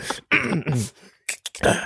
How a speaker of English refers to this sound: got a slight cough.